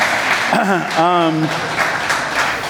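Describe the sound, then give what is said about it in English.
An audience claps steadily in a dense, loud wash of applause, with a voice calling out briefly over it in a couple of rising and falling cheers. “So you can clap for that.”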